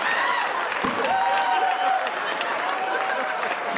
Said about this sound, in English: Listen to that crowd roar.